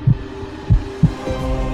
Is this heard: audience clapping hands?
no